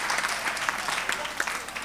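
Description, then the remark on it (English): A crowd claps for the Lord in a steady, dense patter of many overlapping hands, holding an even moderate loudness throughout with no voices standing out. “Give the Lord a clap of free.”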